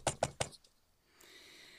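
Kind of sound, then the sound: impact, knocking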